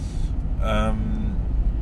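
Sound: car interior driving noise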